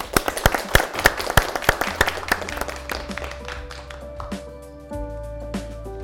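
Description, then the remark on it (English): An audience at a UI Sweden seminar applauds to thank the speakers Oleg Sentsov, Andreas Umland and Karina Shyrokykh, a burst of dense clapping that gradually thins out, while sustained musical tones rise underneath and take over toward the end. “We thank Oleg Sentsov, Andreas Umland and Karina Shyrokykh with a round of applause.”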